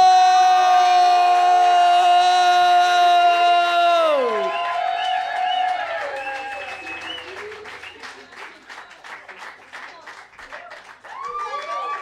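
A loud sustained musical chord slides downward and fades, giving way to a crowd's steady applause, dense clapping with scattered whoops and cheers rising over it.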